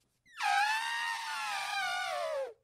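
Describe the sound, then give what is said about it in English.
A person imitates an elephant's trumpet with one loud, sustained, high and brassy cry lasting about two seconds, wavering slightly before sliding down in pitch at the end. No one talks over it. “You're right. That's an elephant.”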